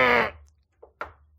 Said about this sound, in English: Who's knocking on what? Someone's knocking on the bathroom door.